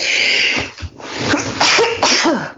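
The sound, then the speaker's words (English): A sneeze from someone in an audience, a loud, breathy burst with a sharp explosive release, with some background crowd noise. “God bless you.”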